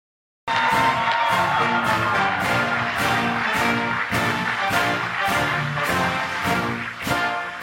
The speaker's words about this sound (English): Now, did you hear how quiet that was? You can hear like the individual claps.